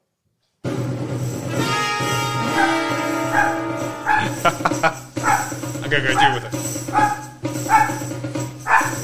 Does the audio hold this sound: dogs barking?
yes